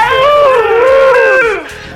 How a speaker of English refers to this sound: And some wolves.